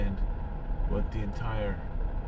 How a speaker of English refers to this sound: We are on our way to work. We are stuck behind a recycling truck. Recycling kills. Why would this guy get out and, like, let me go by?